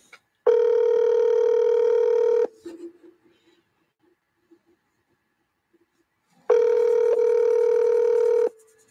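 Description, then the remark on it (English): A telephone ringback tone heard from the caller's end: two long, steady electronic rings about four seconds apart, separated by a quiet gap with faint line noise. “Ringing.”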